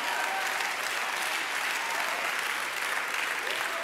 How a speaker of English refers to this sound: Bunch of visitors that don't know if they should clap or not right now. They're like, I don't know, I'm still figuring this out.